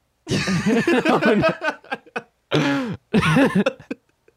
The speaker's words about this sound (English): I continue to cough, just... It's been a long trip.